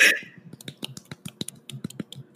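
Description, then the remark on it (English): A soft, polite golf clap: a run of light hand claps patting out a loose, steady rhythm at low volume, with no talking over them. “I'm gonna golf clap for this.”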